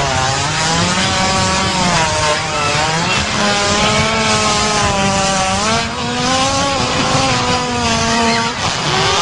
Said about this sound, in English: Specifically, I believe the other day we stumbled upon a hippo fart and we didn't even believe it was real because it made this noise.